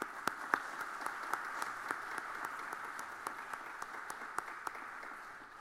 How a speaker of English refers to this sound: if you're sitting near a graduate, let's just take a small moment and give them a round of applause and cheer for them. All right, ready, go.